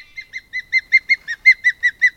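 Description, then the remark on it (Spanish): A bird of prey gives a rapid run of about a dozen sharp, whistled chirps, evenly spaced and growing louder, clear with nothing else in the background. “Analicemos tres aves rapaces: la lechuza común, el halcón peregrino y el águila pescadora.”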